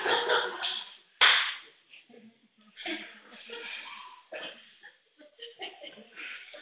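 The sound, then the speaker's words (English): A single loud, crisp slap cracks out early on, sharp, with laughter and chattering voices rising around it before and after. “And I'll mix those two together and make a Christian bumper sticker, and I'm slapping you in the name of Jesus.”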